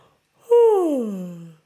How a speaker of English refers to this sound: One way to release and relax those vocal false vocal cords. So the most easiest way is to yawn. So give me a yawn.